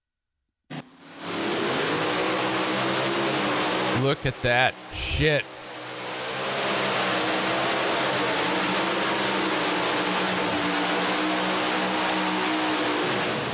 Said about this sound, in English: He's in his, that's his. His tractor. Look at that thing.